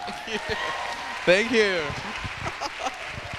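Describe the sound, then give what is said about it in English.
A crowd in a Lutheran building in New England applauds steadily to welcome a guest speaker, a dense patter of many hands throughout, with a brief rising-and-falling cheer from one voice about halfway through. “And there's always that bit of false humility in you when you get clapped and you're like, it's Jesus.”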